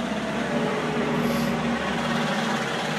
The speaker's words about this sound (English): And as God is my witness, a tractor is just driving by. You can hear it. And there's a huge 555 on the side of the tractor.